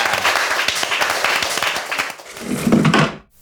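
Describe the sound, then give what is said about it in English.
A crowd bursts into steady applause welcoming chefs Yotam Ottolenghi and Noor Murad, a dense wash of many hands clapping at once with a few louder claps, holding for about three seconds before quickly dying away. “Please welcome, round of applause, please, for Yotam Ottolenghi and Noor Murad.”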